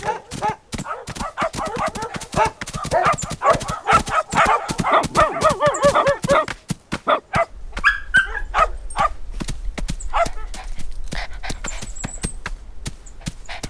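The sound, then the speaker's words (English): Several small dogs, Chihuahuas and elderly pugs, bark and yip in a rapid, overlapping frenzy, loud, easing slightly midway as a low rumble enters beneath the continued sharp yaps and occasional whimpers. “I don't think that Chihuahuas and elderly pugs are traditionally guard dogs.”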